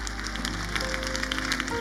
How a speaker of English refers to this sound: Hey, man, can we clap for these women? Can all the women clap your hands and thank God for what you have learned today?